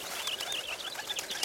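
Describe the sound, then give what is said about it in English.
Small birds Ren and Finch chirp and twitter as they fight in rapid, overlapping bursts, a busy, squabbling chatter of high, thin calls that keeps going without a pause at a moderate level. “Ren, Finch, again with the fighting. God, stop your infernal racket.”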